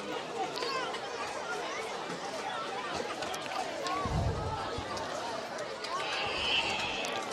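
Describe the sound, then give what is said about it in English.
Steady crowd chatter from many overlapping voices of a big crowd gathered for the All-Star announcements at a little league doubleheader game, a dense murmur with occasional higher calls and a brief low thump partway through. “And again, we have a big crowd now.”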